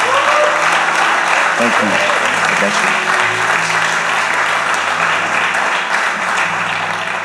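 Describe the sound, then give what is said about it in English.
Loud, sustained applause from an audience for two people fills the whole stretch, steady and dense clapping with a few voices speaking briefly over it. “Can you give it up for these two?”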